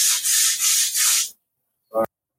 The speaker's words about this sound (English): What the hell is that sound? That would be my husband sanding things in the background. I'm sorry.